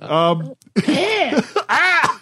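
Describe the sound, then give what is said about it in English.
A person mimics a sick parrot with three strained, squawking, cough-like vocal bursts, the last two rising and falling in pitch, fairly loud with short gaps between them. “Don't cough that parrot noise.”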